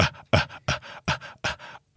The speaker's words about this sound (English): What's that? It's me doing my breathing exercises before we fucking launch into this madness.